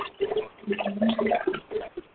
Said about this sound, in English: I'm hearing like water going down a drain. Yeah, me too.